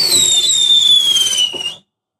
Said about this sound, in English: And then after that, I'm going to set up the most expensive fireworks you ever heard.